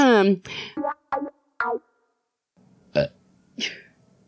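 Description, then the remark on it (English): A series of loud burps: a long croaky one followed by several short voiced belches in quick succession, then a pause and a couple of softer, breathier burps. “Burps.”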